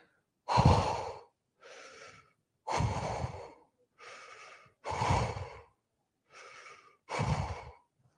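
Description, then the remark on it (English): A person imitates a fighter pilot's heavy oxygen-mask breathing in flight: loud, harsh inhales alternating with softer exhales in a steady rhythm, with no speech. “And you could hear him breathing in flight. And apparently it sounded something like this.”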